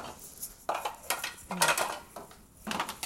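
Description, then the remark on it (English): Dishes and silverware clatter as they're handled, a series of irregular clinks and scrapes of ceramic and metal knocking together, with no one talking. “I'm trying to figure out what all I can put in here. Why? That is not silverware.”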